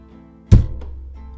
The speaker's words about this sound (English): Carlos slammed his fist down on the table, silencing Adriana's protest.